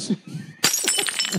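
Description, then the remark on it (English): A dropped glass stubby beer bottle smashes with a sudden loud crash after a quiet moment, followed by a brief scatter of bright, high-pitched tinkling shards. “Who dropped their stubby?”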